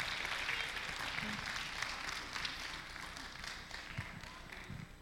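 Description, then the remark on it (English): Steady applause from an audience for a red carpet of people in costumes, a dense patter of many hands clapping at once, holding fairly even in loudness for about five seconds with no voices over it. “Let's give a round of applause for our red carpet.”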